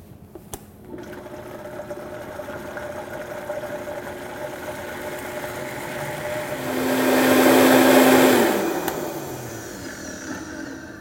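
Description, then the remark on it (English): A blender whirs steadily, pureeing a thick avocado dressing with Dijon mustard and a couple tablespoons of water until smooth, then surges louder and harsher for a couple of seconds before the motor winds down. Fairly loud, with no talking. “Let's puree this up until it's smooth.”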